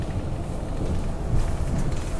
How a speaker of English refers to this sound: Oh, there goes another bus left. Me and these buses this morning.